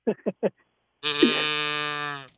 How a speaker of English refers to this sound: So you heard somebody get a moo, and you wanted your moo.